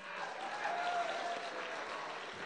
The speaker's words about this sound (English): Not bad, huh? By applause, how many like this theme?